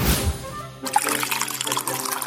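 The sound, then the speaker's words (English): Liquid pours steadily into a cup for a couple of seconds, a continuous splashing trickle after a brief low rumble at the start, with no voices. “Pour yourself a cup of your favorite hot or iced beverage, and let's dive into the enchanting world of Disney.”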